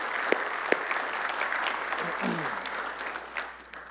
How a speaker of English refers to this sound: All right, let's clap for them one more time. You guys can go ahead and have a seat.